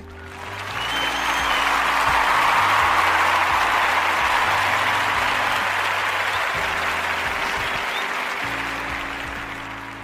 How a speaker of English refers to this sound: I changed my mind. I decided to play the clapping effects. I just did it just to do it.